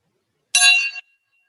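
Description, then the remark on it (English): A meditation gong is struck once, giving a bright metallic ring with shimmering overtones that sounds for about half a second before cutting off abruptly, leaving only a faint tail. No one speaks. “So I know the gong doesn't resonate so beautifully, but see if you can find some beauty in the sound of the gong.”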